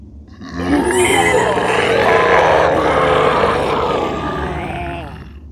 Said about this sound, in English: When the black smoke happens, and like as you guys are saying all this, you hear multiple inhuman bestial screams coming from the passageway that you all came down, or that you all came back from.